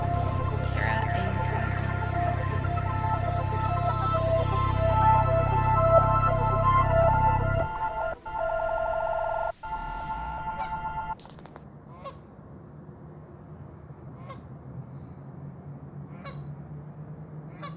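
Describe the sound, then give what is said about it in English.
Outdoor ambience in the Edmonton River Valley: a steady low rumble with harsh, honking bird calls for several seconds, then it drops to a quieter wash broken by scattered faint chirps and clicks. No one speaks. “The sounds you're listening to were recorded in the Edmonton River Valley.”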